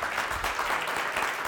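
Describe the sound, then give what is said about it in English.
A church audience applauds, giving God a hand clap after a sermon, with dense, steady hand clapping that stays loud and even throughout, a continuous wash of many overlapping claps with no single rhythm standing out. “Give God a hand clap.”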